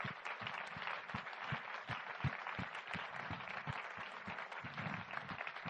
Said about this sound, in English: And then, let's honor them by giving them a round of applause, shall we?